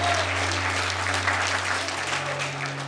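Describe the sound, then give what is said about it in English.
An audience gives a hand clap to God in thanks, sustained, dense applause, a continuous wash of many hands at a fairly loud level, with a low electrical hum running underneath. “I want you just to give yourself a hand clap in God and just say, I just want to say thank you.”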